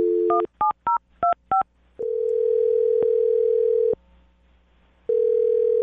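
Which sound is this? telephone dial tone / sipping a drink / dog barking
telephone dial tone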